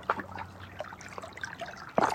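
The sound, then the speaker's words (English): Water trickles and splashes steadily over billion-year-old rocks, a soft continuous babble with small irregular bursts, ending in a slightly louder gurgle. No voices are present. “The mystery of this water that's been here, cycling and cycling, carrying songs.”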